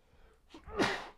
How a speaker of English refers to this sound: I'm going to sneeze.